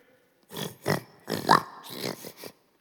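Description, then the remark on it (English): A voice imitates oxen lowing: a few short, rough, grunting bursts in quick succession, fairly loud, with no other sounds around them. “Those are oxen.”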